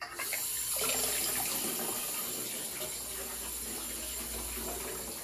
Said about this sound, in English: Time to run the bath water.